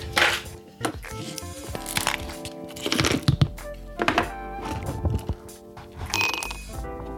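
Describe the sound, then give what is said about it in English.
Ice cubes drop into a glass for a gin and tonic, a series of sharp clinks and knocks with ringing glassy overtones, spaced irregularly over several seconds with no talking. “and some ice, which is quite important right now because it's been really warm.”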